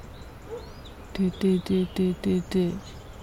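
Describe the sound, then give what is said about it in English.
A bird repeats a single low, hollow note six times in an even, steady rhythm, each call short and clear against a quiet outdoor background. “Single tone, repetitive.”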